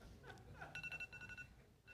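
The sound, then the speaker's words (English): A digital timer beeps in a quick run of short, high electronic tones, about half a dozen pulses in under a second, sounding over a low murmur of background noise. “Did you hear my timer?”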